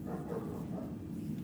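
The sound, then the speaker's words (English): A dog barks and yelps in a dense, continuous run with no clear pauses, somewhat muffled and steady in loudness, with no voices. “So I've been hearing that barking all night.”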